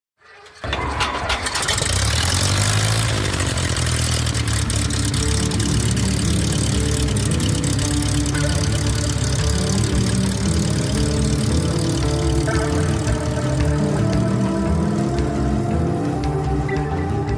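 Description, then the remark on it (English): A propeller plane's engine coughs to life and settles into a steady, loud, rumbling idle that continues without pause, with no voices. “time to climb aboard, buckle up, and prepare for takeoff on today's adventure, Wildfire, How an Airport Helped Save a Town. Clear prop.”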